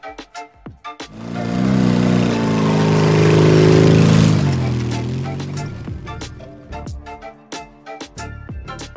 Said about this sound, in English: Hey fellas, I hope you don't plan on riding those dirt bikes on the street.